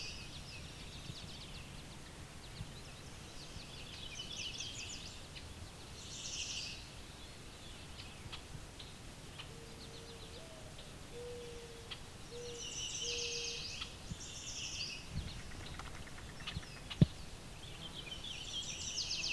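A fairly loud mourning dove coos a short series of low, hollow notes midway through, over steady high insect buzzing and scattered bird chirps in an open outdoor setting.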